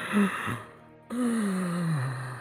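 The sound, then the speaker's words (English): Strained, labored agonal breathing: a short rasping gasp, a brief pause, then a long drawn-out groaning exhale that slowly drops in pitch, moderately loud, with no talking. “That just sounds like agonal breathing, though, so whatever's in there.”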